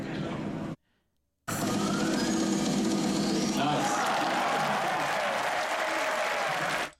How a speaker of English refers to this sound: So that one was actually in person, so you could actually hear the crowd pop off behind him.